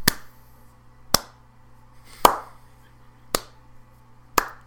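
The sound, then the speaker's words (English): One person claps five times in a slow, steady rhythm, each clap a single sharp smack with a short ring after it, over a faint low hum and no talking. “And then he'll probably say something like, sorry, is someone clapping or something? And I'll be like, I was clapping.”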